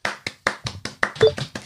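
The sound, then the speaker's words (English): Hand clapping: about nine crisp, evenly spaced claps in a quick steady rhythm, moderately loud, with no talking over them. “Round of applause.”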